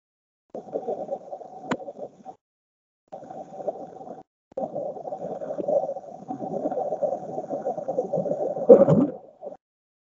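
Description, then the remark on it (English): The Bloop, an unexplained underwater ocean sound recorded by NOAA hydrophones in 1997. A low, murky rumble swells and fades in long bursts with brief gaps, rising to a louder, bubbly surge near the end, like a slowed-down deep-ocean recording. “The bloop. Let me find it. I feel like there are so many bloops in the ocean.”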